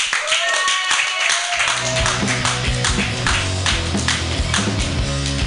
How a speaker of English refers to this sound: Everybody keep clapping, yay! And then keep your clapping going, because your next comedian is just fresh off the Cobb stage, you guys.